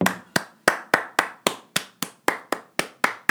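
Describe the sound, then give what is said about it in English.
A round of applause from a single pair of hands: about eleven sharp, crisp claps in a steady, even rhythm, roughly three per second, with no talking. “Okay, I think my mom definitely deserves a round of applause.”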